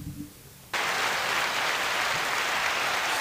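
After a brief quiet moment, a crowd bursts into loud, sustained applause, a dense wash of clapping that holds steady at full volume to the end.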